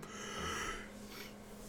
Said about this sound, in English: Oh my goodness, ladies and gentlemen, he yawned.